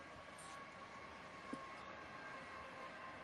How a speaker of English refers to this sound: Damn it. My fucking train is driving by.